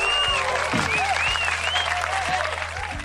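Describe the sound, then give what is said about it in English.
Sustained applause from a crowd, a dense steady clatter of many hands clapping at an even loudness for about three seconds, with faint whistles and cheers mixed in. “Round of applause.”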